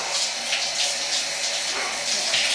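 A shower runs steadily, a continuous hissing spray of water with a slight ebb and swell, close by and fairly loud, with no voices.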